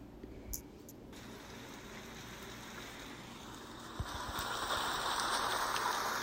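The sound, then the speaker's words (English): Steady rain hisses over a low rumble, with a few faint patters early on; the downpour swells noticeably louder and denser partway through and stays heavy to the end. No one speaks. “It's a cozy, rainy day until everything around you is suddenly filled with water, inches deep.”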